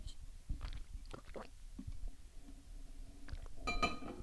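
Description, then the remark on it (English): Soft wet sipping and gulping sounds as someone takes a sip of water, with scattered light clicks, ending in a brighter, ringing clink of glass against something hard. “And then I'll take a sip of water to balance it all out.”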